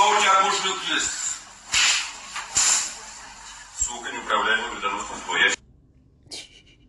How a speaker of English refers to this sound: Dude just slapping the mess out this girl. That's not nice.